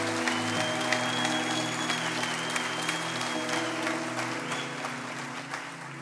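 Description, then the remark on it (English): An audience claps steadily for about six seconds as a woman comes up to join the speaker, a dense, even patter of many hands that eases slightly toward the end, with a low sustained hum underneath and no one speaking. “and you guys can clap for her as she comes, if you don't mind.”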